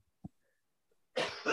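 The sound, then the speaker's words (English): A faint short cough, a pause, then two harsh, loud coughs in quick succession, like the start of a coughing fit, from a person with whooping cough. “battles a whooping cough.”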